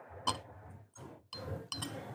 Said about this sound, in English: I'm going to do a little pop there, and then I'm going to do a little pour, and then we can get into it.